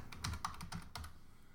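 Quick, uneven clatter of computer keyboard typing as a search is typed into a search engine, about seven or eight sharp key clicks in a bit over a second, fairly loud, with no voices over it.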